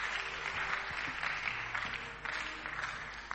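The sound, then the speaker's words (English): A church audience claps steadily, the dense patter of many hands merging into a continuous wash of applause with faint low tones underneath. “Clap your hands and stand to your feet.”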